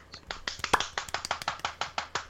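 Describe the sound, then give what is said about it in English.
A brief burst of applause: many sharp hand claps in a quick, slightly uneven rhythm, moderately loud, with no voices over them. “Clap for”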